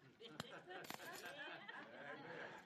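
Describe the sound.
A custodian's keys on a ring, shown during a morning sermon, jingle in a few sharp metallic clinks, one near the start and a quick pair shortly after, over a low murmur of voices.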